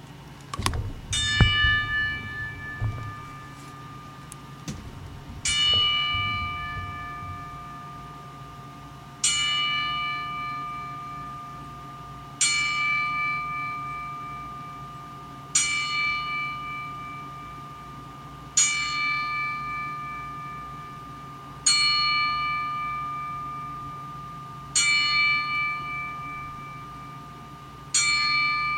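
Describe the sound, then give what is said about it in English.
A single bell tolls slowly and steadily as a ten-bell salute for deceased wrestlers, about ten strikes spaced a few seconds apart, each clear ring fading into a long shimmering decay, with no voices present. “But here's our 10 bell salute, and we will be right back, guys.”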